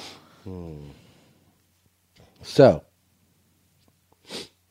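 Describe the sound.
A person says a single short word, then sniffs sharply through the nose twice, a few seconds apart, due to allergies. The sniffs are brief and breathy.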